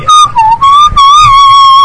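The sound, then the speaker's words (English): Someone whistles loudly, holding wavering, drawn-out notes with a couple of brief breaks, over a faint low background rumble. “Are you whistling on the podcast?”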